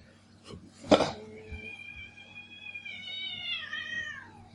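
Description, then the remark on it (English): A cat lets out a long, drawn-out complaining meow lasting a few seconds, fairly quiet, following a brief clatter or thump at the start. “The cat does not like that.”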